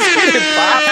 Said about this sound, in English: And you know, when I introduced you, I meant to give you the freaking air horn. So I got an air horn.